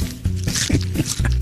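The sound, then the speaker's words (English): Someone chews a bite of turkey: moist, squishy smacks and small crunches across a second and a half, with a low voiced hum running underneath. “Hold on. Another little bite.”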